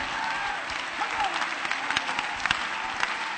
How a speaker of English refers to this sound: If God saved him, clap your hands and give God the praise.